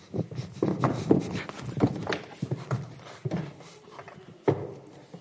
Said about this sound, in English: Sorry about the chairs, y'all. I didn't hurt any of them. Somebody's going, I can't believe he jumped on that chair.